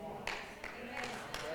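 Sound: half-hearted audience clapping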